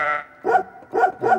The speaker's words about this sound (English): And there's the sheep up in the second octave here.